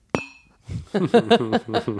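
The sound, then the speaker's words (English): A single bright clink of shot glasses touching in a toast, ringing briefly before fading, followed by people talking. “Every time vibes is said, take a shot. Cheers.”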